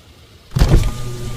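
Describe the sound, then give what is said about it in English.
A car's power window starts rolling down at a car wash after a brief quiet moment, a steady electric motor whir with a faint mechanical hum that continues to the end. “stick your head out the window for the drying part.”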